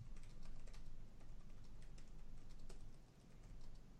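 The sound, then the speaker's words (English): Rapid, uneven clicking of computer keyboard keys being typed on, with a steady low hum underneath and no talking. “Sorry, I'm typing.”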